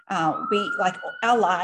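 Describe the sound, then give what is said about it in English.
Emergency vehicle sirens sound in the background behind the speaker, a thin steady tone held beneath a person talking in the foreground. “We, I know there's sirens behind me.”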